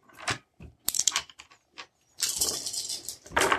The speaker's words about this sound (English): All right, go ahead and give me a roll, please. How many dice is it? 13. A lot.